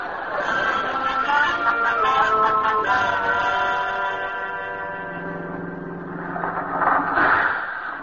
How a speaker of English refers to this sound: Oh, the bus. Wait, don't leave. I'm coming.